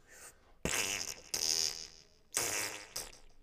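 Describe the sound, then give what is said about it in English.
Several loud, buzzy raspberry-like bursts, a voice imitating farting sounds in quick succession, each sputter lasting about half a second with short gaps between them. “Your cum sounds like farts.”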